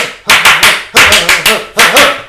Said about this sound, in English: Like, tonight, there are Australian fans singing, you know, Aussie fans in the stands, if you hear us, clap your hands.